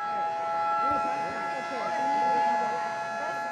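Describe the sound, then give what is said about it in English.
A steady, sustained siren at a Chishti dargah (shrine) during Ramadan, signalling people that it is time to break their fast and begin eating, drones on without a break, its high tone holding level above a busy murmur of many voices talking. “The siren tells the people it's time to begin eating.”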